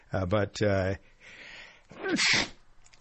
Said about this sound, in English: I'm about to sneeze again. So give me a minute or two to sneeze, and then I'll finish my thoughts.